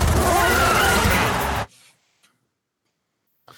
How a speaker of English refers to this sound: Car noises, the movie. All the sounds going on.